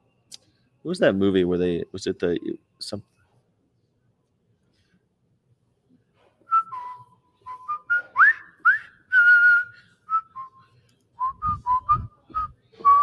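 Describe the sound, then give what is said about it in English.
A brief spoken voice, then a whistled march-like melody of short and sustained notes from a war film about Allied prisoners of war building the Burma death railway, clear, continuing lightly to the end. “There's a song where they whistle.”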